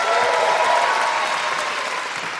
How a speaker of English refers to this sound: Thank you so much. Big round of applause.